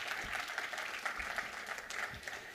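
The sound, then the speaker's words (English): An audience claps in a sustained round of applause, a dense, even patter of many hands with no single claps standing out, steady in loudness across the whole stretch. “Can we give Sam a round of applause?”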